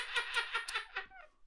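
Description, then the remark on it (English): A person makes a quick run of five pursed-lip tutting clicks, fairly loud, the coaxing sort used to urge a sick cat back from the vet to eat its food, ending in a soft falling voiced sound. “And the other one is, which is eat up, it sick cat. Like you're trying to get the cat to eat the food because it's come back from the vet and it's poorly eaten.”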